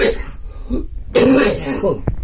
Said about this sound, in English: I knew I wasn't going to be able to get through a show without coughing, but hey, what can you do?